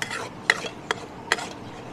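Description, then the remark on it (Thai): Food stir-frying in a wok that is not yet fully hot: a steady sizzling hiss with three sharp spatula clanks against the pan at a quick, even pace, with no one speaking. “กระทะต้องให้กลิ่นกระทะมากกว่านี้หน่อยคุณบัญชรเพราะกลิ่นกระทะมันเหมือนกับตอนแรกมันยังไม่ร้อนอ่ะ”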